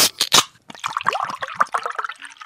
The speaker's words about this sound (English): Let me just pour one out